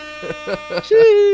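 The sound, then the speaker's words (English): A short burst of voices gives way to one loud, sustained air horn blast, a steady bright blare that holds its pitch and runs to the end. “Give the air horn, man. Please come on. Air horn for Selection.”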